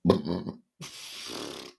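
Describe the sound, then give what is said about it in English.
A short, throaty burp lasting about half a second, fairly loud, followed after a brief pause by a breathy, noisy exhale or muffled vocal sound. “hold on, I'm going to burp.”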